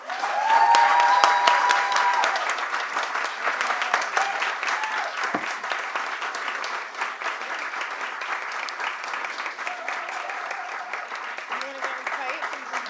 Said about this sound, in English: for one final round of applause.